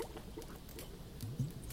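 Soft, steady flowing water murmurs quietly in the background of a meditation, with a few small gurgling splashes rising briefly near the end. No one speaks.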